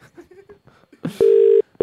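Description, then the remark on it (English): Brief low murmuring voices, then loud, steady electronic keypad tones as a telephone number is dialed: one sustained beep, a short gap, and another beginning. “So let's put the number in.”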